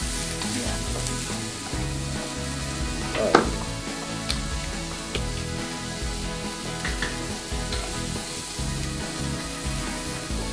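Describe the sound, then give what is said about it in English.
Beef with some gristle in it sizzles steadily in a pan without olive oil, a dense crackling hiss that holds level throughout, with one sharper pop or clatter partway through and a brief word from a voice. “The reason being is, you know, the actual beef has some grizzle in it.”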